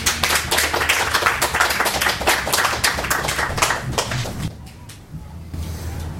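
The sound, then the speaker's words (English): An audience claps steadily for about four and a half seconds, many hands making dense, overlapping bright slaps, then the applause thins out and fades to a few scattered claps, welcoming the next reader at a poetry reading. “Let's give him a hand.”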